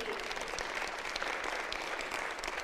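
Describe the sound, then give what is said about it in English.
An audience claps steadily, a dense, sustained wash of many hands at moderate loudness, continuing evenly from start to end with no voices standing out. “This is okay, clap your hand.”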